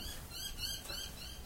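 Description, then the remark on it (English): Light scratchy pattering of bird feet, a dense run of tiny close taps and scrapes over a steady noisy background, with no voices. “Oh, they just came back and walked away.”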